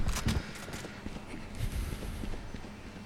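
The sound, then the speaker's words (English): Many rapid footsteps patter and clatter together in a video game, a busy rhythmic stomping of several feet moving at once, steady throughout with no talking. “A lot of footsteps.”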